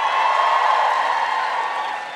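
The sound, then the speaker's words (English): A crowd claps and cheers in a dense, steady wash of applause that holds strong for about two seconds before starting to thin out. No one speaks over it. “Some of y'all ain't clapped.”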